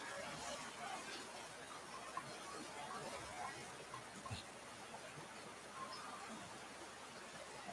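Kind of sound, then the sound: nature, rain falling outdoors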